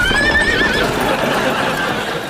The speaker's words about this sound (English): Now, the crucial thing is not to just get on this particular horse and shout giddy up and ride off, because it will bolt, and all the other horses are trained to follow it. Giddy up!